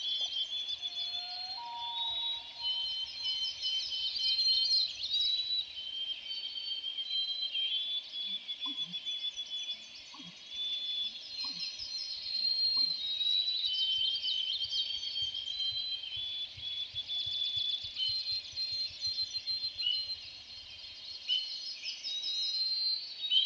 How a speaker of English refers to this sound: Hear those peeps? They're coming from an aptly named spring peeper. It's a tiny orange frog. By itself, this male isn't too loud, but at night when males call together, the chorus can be deafening.